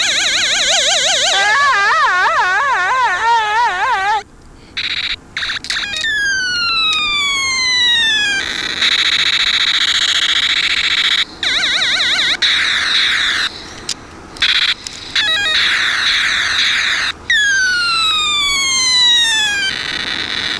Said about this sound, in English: And if that didn't get them, then the biggest, the best. Alarm.